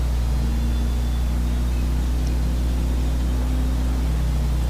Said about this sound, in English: Whoa. Man, this Camaro cruises at this speed. My god. This Camaro really cruises.